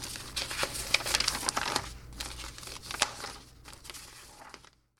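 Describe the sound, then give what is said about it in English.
A two-sided paper form being handled at a clinic: steady crinkling and rustling with sharp crackly bursts over about five seconds before it stops abruptly; a faint low hum sits underneath and no one speaks. “Fill out both sides of the paper and bring it back to me.”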